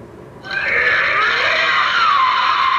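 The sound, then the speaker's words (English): The monster Birdon gives a loud, sustained screeching roar that bursts in after a brief quiet moment, a shrill, harsh wail that slowly slides downward in pitch and holds strong to the end, like a giant creature's cry. “All right, Birdon's roar.”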